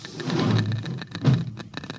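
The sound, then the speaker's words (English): A Geiger counter crackles with rapid, irregular clicks in a ship's cabin, reading strongest near a wall cabinet. Sharp bursts come in uneven clusters over a low, steady rumble. “Listen to that counter. Strongest over here.”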